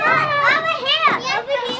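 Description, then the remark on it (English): Children and parents at the reopened playground at Trolley Barn Park in University Heights, with high-pitched overlapping children's voices, shouts and squeals that rise and fall continuously at a fairly loud level. “Parents and kids wasted no time in taking advantage of the reopened playground at Trolley Barn Park in University Heights when ICU capacity in Southern California fell below 15% last week.”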